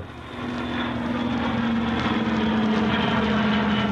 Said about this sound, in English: And when the plane touched down at Shannon on the way out